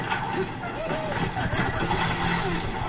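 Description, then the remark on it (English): A fire truck's engine rumbles steadily in a video game as other players ride the fire truck, a loud continuous low drone with shifting tones, layered with busy background game noise for the whole few seconds. “Oh, they're riding a fire truck.”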